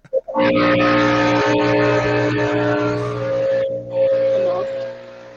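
A leaf blower drones loudly and steadily outside a window, a buzzing motor whine with strong humming overtones that holds for several seconds and briefly dips before surging back.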